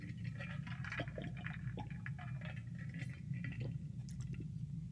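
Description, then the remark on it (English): Someone sips water, making a run of small wet slurps and squishy mouth clicks over a steady low rumble, with no talking. “Now let's take a sip.”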